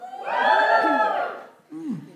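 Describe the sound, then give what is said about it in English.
An audience cheers and whoops loudly for over a second when asked to cheer if they are bi or pansexual, a dense mix of shouting voices, then fades before a brief burst of renewed cheering with a falling whoop. “Is it appropriate to say, give us a cheer if you're bi or pansexual?”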